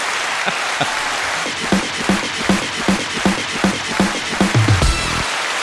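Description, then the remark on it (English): A steady wash of crowd applause with a run of sharp, evenly spaced claps punching through the middle, ending in a brief rising whoop or cheer before it cuts off. “Here's some applause.”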